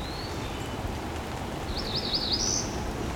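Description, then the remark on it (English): A bird hidden among dense foliage gives a short, high warbling call, preceded by a faint thin whistle, over a steady rain-like hiss. No one speaks. “I'm trying to keep an eye in the direction where I hear it.”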